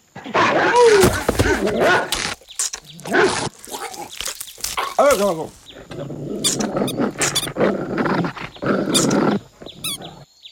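A rabid dog snarls and growls viciously in a frantic attack on a postman, with yelps, squeals and thrashing noises piling up loudly for about ten seconds.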